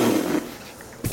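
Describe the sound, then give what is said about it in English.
Two harsh coughs blast straight into the microphone: a longer, rough first cough, then a brief quiet gap before a second short, sharp cough. No one speaks. “Oh shit, I keep coughing in the mic.”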